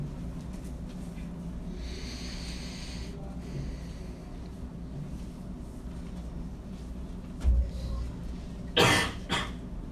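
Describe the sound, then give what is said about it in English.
A single sharp sneeze bursts out near the end, followed by a brief sniff, over a steady low murmur of background noise with no clear talking. “Bless you.”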